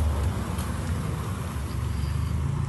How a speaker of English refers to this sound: it's passed by a couple cars here. Trying not to get run over all the time because of these narrow streets.